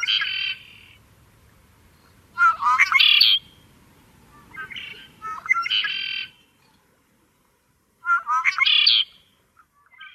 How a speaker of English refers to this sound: So this third bird we have today is called a red-winged blackbird. A lot of people call their call when they make the noise, they go conkeree, and they're just an incredible sign of spring. So here you go. Here's red-winged blackbird. Conkeree.